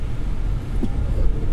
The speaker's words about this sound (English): let's just see what the acceleration of an electric fuel cell car is like